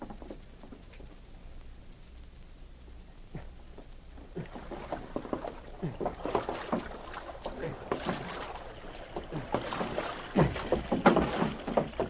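A canoe paddle dipping and pulling through water, with repeated splashy swishes in a loose rhythm, quiet at first and growing louder and busier toward the end.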